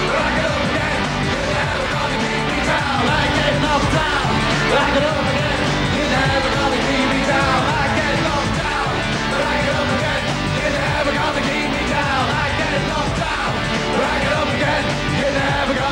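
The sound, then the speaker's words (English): A live band plays a loud, driving rock anthem with shouted group vocals at the 1998 Brit Awards, steady and dense throughout, while a crowd cheers and yells along underneath. “Okay, that's the song. That was from the Brits in 98, which we'll talk about later.”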